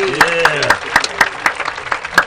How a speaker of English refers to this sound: Give him a round of applause, ladies and gentlemen. Come on.